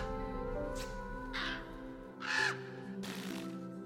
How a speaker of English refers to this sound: I hear birds.